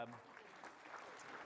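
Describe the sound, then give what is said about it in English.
A short burst of audience applause for an adult male volunteer, a steady crackle of many hands clapping, with a voice briefly heard at the start. “You seem to be being volunteered, so a round of applause for my...”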